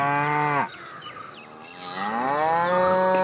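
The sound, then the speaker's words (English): A Holstein dairy cow moos loudly, a short low call that breaks off, then a longer drawn-out moo that swells and holds, with faint insect chirping behind. “A day after the new year, Yoko Ono closed on a deal with Nelson Gardner, a dairy farmer from Bridgewater, Virginia, purchasing 103 registered Holstein dairy cows for the Lennon's farm in upstate New York.”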